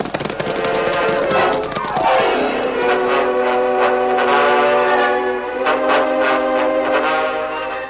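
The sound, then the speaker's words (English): A steam locomotive whistle wails loudly and steadily for several seconds as a work train arrives on the main track beside a telegraph office in drizzling rain, its chord bending downward in pitch early on before holding, with a rumbling, noisy background beneath it. “It was only a short time later, and the rain had slackened to a drizzle, when a wailing locomotive whistle announced the work train's arrival on the main track beside the telegraph office.”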